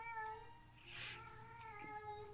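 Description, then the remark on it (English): A cat meows in a drawn-out, wavering cry with a brief brighter burst midway, fairly quiet, with no voices over it. “Even the cat's laughing.”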